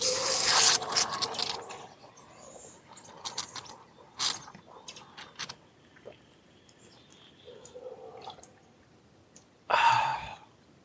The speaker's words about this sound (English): Oh, that's better. Impressive. Agreed. I had no idea that she had that espresso machine in her coat.